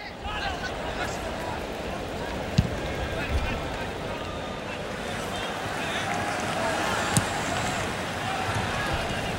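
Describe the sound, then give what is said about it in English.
Recording of a football match at the 2004 Athens Olympics: a dense, steady roar of crowd noise throughout, broken by two sharp, isolated thuds like a ball being kicked, a few seconds apart. “What you're hearing now is a game from the Athens Olympics in 2004.”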